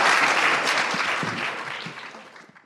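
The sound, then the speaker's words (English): An audience at a festival applauds the panelists of a writers panel, a dense wash of many hands clapping that starts strong and gradually thins and fades over a few seconds, with no one speaking. “Please give a round of applause to all of our panelists.”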